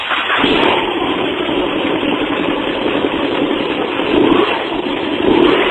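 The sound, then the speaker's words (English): An engine fires up after a brief click, then settles into a loud, steady rumble, with a couple of throttle revs swelling near the end. No one speaks. “A good running episode of The Wheel Nerds start like this.”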